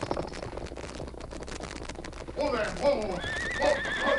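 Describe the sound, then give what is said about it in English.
Rapid hoofbeats pound steadily for a couple of seconds, then a loud, wavering horse whinny rises over them and carries on to the end, strong. “Perhaps he's unable to pull in his horse.”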